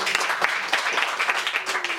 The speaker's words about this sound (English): So you are so far ahead of most of the people in this country, and for that, we give you applause.